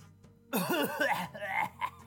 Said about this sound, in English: Why are you coughing now? Isn't this a flashback?